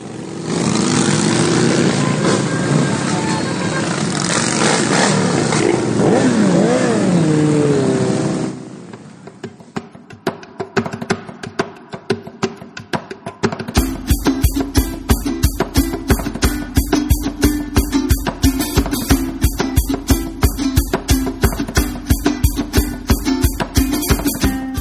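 Motorcycle engines at the Rolling Thunder rally in Washington, D.C., on Memorial Day weekend roar loudly and rev with rising pitch for several seconds, then drop to a quieter idle before settling into a steady, rhythmic low rumble of pulsing engine beats.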